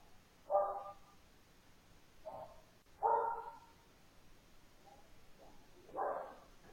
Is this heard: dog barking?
yes